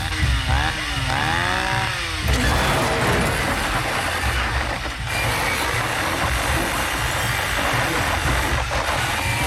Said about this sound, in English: I'll put a little Speed 2 in the background while we do this. Ooh, look at her coming with a chainsaw. Why is there a chainsaw on a cruise ship?